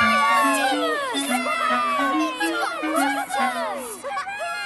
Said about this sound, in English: At Vickers Town Station, the children cheered when they saw Cheeky Monkey Thomas.